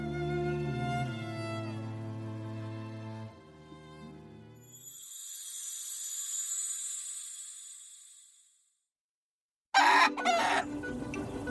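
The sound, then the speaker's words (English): A chicken clucks and squawks in a run of loud, harmonic calls that rise into a shrill, drawn-out cry, then a brief silence and a sudden noisy flurry. “And it's a lot harder to catch a chicken than you might think.”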